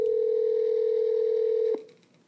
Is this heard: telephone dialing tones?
yes